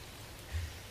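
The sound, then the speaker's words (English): Steady, quiet rain hisses evenly for a second, with a soft low rumble swelling briefly in the middle. No voices. “Walk out into the rain.”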